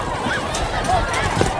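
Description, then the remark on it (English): A crowd at a speech running for the exits after someone yelled out "gunshot", though there was no gunshot, with a dense, steady wash of hurried footsteps and agitated babble from many people, loud and continuous throughout with no clear individual voices. “Okay, running for the exits.”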